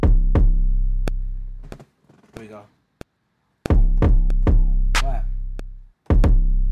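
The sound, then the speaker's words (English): A loud drum pattern, played with the sample muted, with deep, booming kicks that ring out and sharp, snappy claps landing between them in a steady rhythm. A voice briefly speaks partway through. “Boom, boom, boom, clap. Clap. Boom, boom.”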